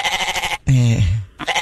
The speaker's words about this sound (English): There it is again. You expect me to believe that that's not Tank bleeding? That's not the bleeding of my Tank? It's not the bleeding of your Tank? What? Bleating. You think I would take your goat bleating.